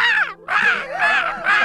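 A crow caws loudly, a string of harsh, nasal calls run together with only a brief pause near the start, and no one talking.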